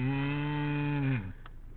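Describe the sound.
A voice imitates a cow's moo: one long, steady lowing tone for over a second that dips and drops away at the end, loud and close, with no other talking.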